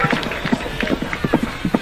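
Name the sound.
horse hooves clip-clopping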